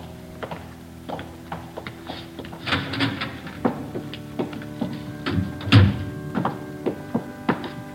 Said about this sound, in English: Yeah, what's that? Climbing stairs to a choir loft.